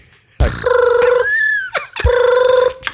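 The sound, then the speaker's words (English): An old telephone rings twice, each loud, rapidly trilling burst separated by a short pause, with no talking over it. “You've got an old phone there”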